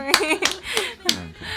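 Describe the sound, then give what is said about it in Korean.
A few sharp hand claps as applause, roughly four, spaced unevenly, mixed in with people's voices talking or laughing around them. “너 이쯤에서 박수 한번 쳐.”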